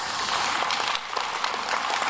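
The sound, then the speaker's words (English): An audience claps together in a dense, steady burst of applause, many hands blending into a bright, hissing wash that holds level for about two seconds, with no voices over it. “And that is something we should clap about, because today when we leave this place, we don't leave defeated, we leave victorious.”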